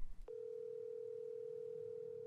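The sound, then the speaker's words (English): A phone call's ringing tone on a call placed from a phone in a parked car: one steady electronic beep held for about two seconds, clear, with no voices around it. “I locked up and sat in my car for a moment before reaching for my phone. I scrolled through my contacts until I found the number I was looking for.”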